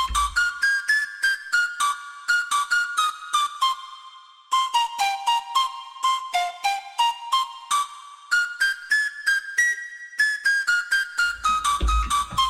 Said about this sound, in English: Wow, it doesn't even sound like I'm playing that. I'm playing on a MIDI keyboard here. So here we got this Arabic flute. It's got a bit of delay on it, though. That sounds beautiful, too.